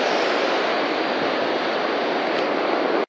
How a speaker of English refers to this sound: So I'll record the ocean because I'm in El Salvador at the beach, walking at the beach, Costa del Sol. It's quite nice.